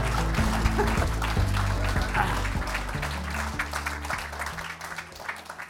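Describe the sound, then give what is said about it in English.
A crowd cheers and claps steadily for several seconds as Toby Young is welcomed, a dense wash of applause over a low, held musical tone that shifts pitch a few times before the noise thins slightly at the end. “So I think the only reason you got a bigger cheer is because you were asking the question and they felt like they had to flatter you.”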